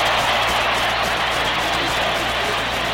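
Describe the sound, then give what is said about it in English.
A huge baseball stadium crowd screams and roars during a night game as Sandy Koufax pitches, one steady, dense wall of noise that holds at full volume the whole time, with a faint low hum underneath and no voices standing out. “This crowd is screaming to the skies.”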